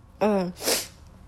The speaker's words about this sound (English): I keep feeling like sneezing.